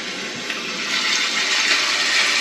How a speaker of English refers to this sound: Ocean. That is ocean. That is ocean stuff. But it is. That is ocean.